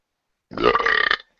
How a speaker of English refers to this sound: I just heard someone burp.